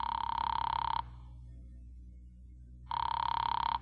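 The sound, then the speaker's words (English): A telephone rings twice through the line of a call made from a phone booth to Fred Lane, each rapid, buzzing ring lasting about a second with a long pause between, sounding thin over a low hum. “A little after five, I went to a phone booth and called my client, Fred Lane.”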